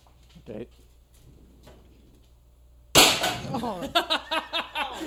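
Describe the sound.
After a few quiet seconds of faint talk, a person reenacts a fall with a metal chair: a sudden, loud crash and clattering scrape, followed by overlapping excited voices.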